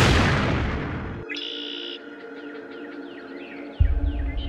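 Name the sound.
fireworks exploding at night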